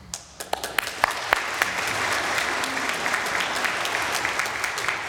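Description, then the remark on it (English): An audience bursts into applause in the middle of an Advent playlist, starting with a few scattered claps that quickly swell into steady, dense clapping from many hands, sustained at an even level to the end. “It's okay to clap in the middle of an Advent playlist.”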